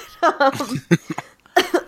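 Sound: cough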